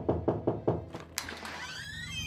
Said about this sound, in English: One day, there was a knock on my door.